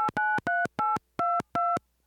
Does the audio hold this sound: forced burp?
no